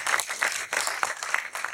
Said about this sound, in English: Yeah, a round of applause for that.